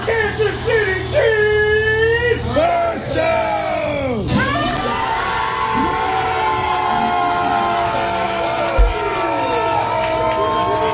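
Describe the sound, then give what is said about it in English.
A rowdy crowd in a Kansas City bar in Queens, New York, shouts and yells about the Kansas City Chiefs football team, voices sliding up and down in pitch in a loud, sustained cheering roar that never lets up. “at the bar screaming about the Chiefs”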